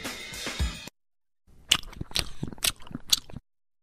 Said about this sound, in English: Go ahead, punch your radio. Come on. I'm chewing gum in your radio. Punch it. Oh, I could just chew all day.